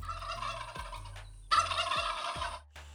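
A turkey gobbles in two loud, rapid bursts, with a short gap between them and no voices.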